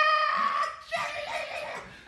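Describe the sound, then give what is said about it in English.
A single voice lets out a sustained, high-pitched shriek that breaks into a rougher, breathy scream, mimicking a crowd screaming in love and adulation toward a female performer. It's loud, lasting about two seconds. “And then like literally the crowd was like screaming at such a high pitch of like love and adulation towards her that I had never in my life heard a crowd scream like that for like everything she did.”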